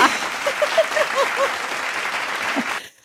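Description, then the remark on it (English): A burst of canned applause played from a sound-effect button, dense steady clapping with a few faint cheering whoops on top, running for almost three seconds before cutting off abruptly into silence. “I've got clapping, cheering, drum roll.”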